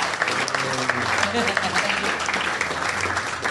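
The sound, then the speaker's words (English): A live comedy-show audience in Perth claps steadily and densely throughout to welcome a local comedian to the stage, a loud continuous wash of many hands, with a voice talking over it early on. “Please start clapping, go crazy.”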